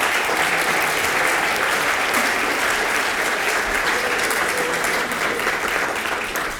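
A sustained round of applause from an audience, dense and steady clapping at a loud, even level throughout, tapering only slightly at the very end, with no voices standing out.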